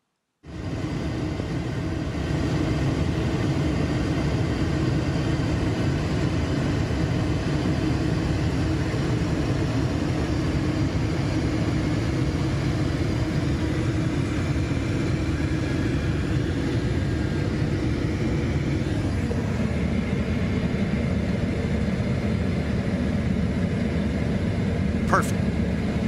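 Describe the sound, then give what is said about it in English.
A loud, steady airplane engine drone roars continuously while the aircraft comes in to land, with muffled voices faintly underneath. “I can tell you how to land that plane.”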